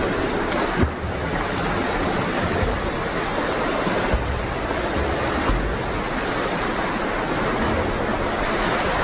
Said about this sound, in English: So the initial story was that the chef, he couldn't swim. Well, here's some video footage of him swimming.